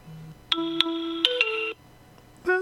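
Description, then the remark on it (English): A phone's text message notification tone plays from a phone held up to a microphone: a short electronic melody of a few bright, stepping notes lasting just over a second, then a brief pause before it starts again. “Just in case anyone does want to know what Jack's text notification is, We shall demonstrate it now.”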